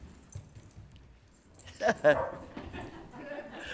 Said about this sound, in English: Pause for very happy dog.